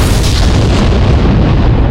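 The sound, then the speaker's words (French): Two bombs explode in a loud rumble: a dense, roaring wall of low booming noise that holds steady for the whole moment without clear separate blasts, and no voices. “Shit, monsieur fait ça, deux bombes là, gon boum boum, monsieur.”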